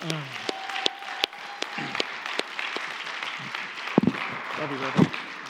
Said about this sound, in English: And so we just, so I want to give you an applause for that.